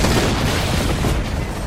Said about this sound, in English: At 2:08, 5 million people were awakened by a massive explosion that was heard for hundreds of miles.